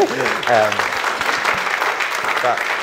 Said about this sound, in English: Wow, wow. Wow, that's a round of applause for that, isn't it?